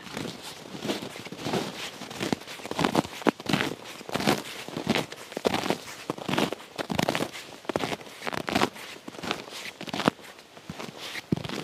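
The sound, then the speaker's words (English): Steady footsteps crunch through white, icy snow and soft, crunchy snow, not cold enough to squeak, each step a crisp, gritty crackle, falling in an even walking rhythm with no voices. “I have to make sounds with the snow and ice.”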